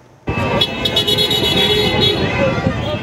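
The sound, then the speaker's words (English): Car horns blare in overlapping, sustained honks over a steady rumble of traffic, loud, with indistinct voices, as vehicles circle the downtown core of Kelowna in a rally in solidarity with the trucker convoy protests. “Vehicles circled the downtown core with people honking horns and waving signs.”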